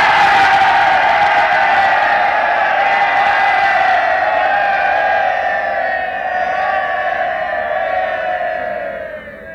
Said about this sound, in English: Okay, choose the best one. 100 men, single cheer. Let's hear what this one sounds like.